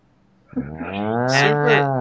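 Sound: cow mooing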